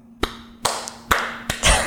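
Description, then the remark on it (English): Five sharp hand claps at uneven intervals, the last one fuller and broader, with a faint steady hum underneath and no voices: the hand clap of Orson Welles in Citizen Kane. “Okay, what about Orson Welles and Citizen Kane with the hand clap?”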